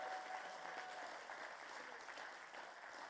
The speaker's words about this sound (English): And so will you give her a round of applause?